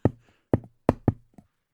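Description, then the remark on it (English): Fingers tap the base of a microphone stand in four sharp, dull knocks with an uneven rhythm, the last two close together, then one faint extra tap. No voices. “I tapped the base of my mic stand. Okay, with the fingers, right?”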